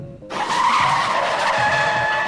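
A loud car tire screech bursts in suddenly and holds as a harsh, high squeal of skidding brakes for about two seconds, with no voices.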